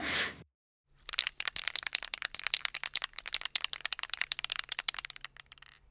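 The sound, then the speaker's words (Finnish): A spray paint can being shaken in Vantaa or its surroundings: a short hiss, a brief pause, then a long run of rapid, sharp metallic rattling clicks in an uneven rhythm, with no talking. “Spraymaali.”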